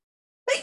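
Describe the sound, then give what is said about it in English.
A single sudden sneeze bursts out after a moment of silence, fairly loud, with a breathy, hissing tail that fades quickly. “Bless you. You allergic to cats?”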